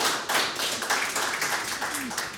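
A crowd breaks into a round of applause, dense and loud, with many hands clapping in a steady wash of noise that holds throughout, plus a brief faint voice rising near the end.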